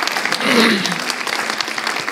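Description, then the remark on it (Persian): A church audience claps hands for Jesus Christ after a prayer, in a dense, steady burst of applause, loud and continuous, with a brief voice rising through the noise near the start. “حقیقتا دست زدن رو باید برای عیسی مسیح انجام بدیم، چون اون کار رو انجام میده، نه؟”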